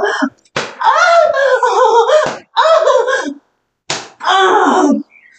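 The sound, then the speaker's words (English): Several sharp, loud hand slaps of a spanking land a second or two apart, each followed by a drawn-out vocal cry or moan in reaction, with brief silences between. “Now you can come like a little slap for everybody.”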